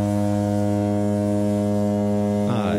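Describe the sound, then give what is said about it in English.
A spoiler bell sound effect: a steady, low, buzzy tone rich in harmonics holds for about two and a half seconds, then breaks into a short noisy flourish at the end, with no talking. “Spoiler bell. I heard it.”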